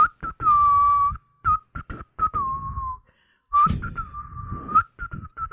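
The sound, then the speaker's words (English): A person imitates whistling a short, wandering tune, a string of clear piping notes broken by brief pauses, loud and with no talking over it. “And then I just start hear this whistling from up there.”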